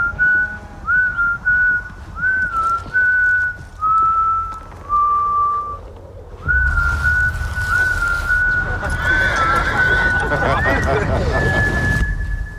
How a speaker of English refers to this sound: His role as Phil in The Power of the Dog, a bullying misogynist, took some intense preparation and lots of discussions with director Jane Campion, and his eerie whistle echoes throughout the film.